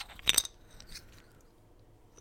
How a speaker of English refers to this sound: You hear those poker chips?